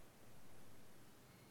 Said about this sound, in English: There's a small noise, chick chick, somewhere, is it me? There's a small static.